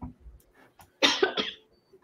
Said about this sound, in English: coughing in sympathy.